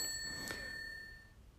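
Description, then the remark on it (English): A single bright bell ding strikes and rings out with a clear, high metallic tone that slowly fades. It is fairly quiet, with no talking. “We may have had a malfunction with the bell.”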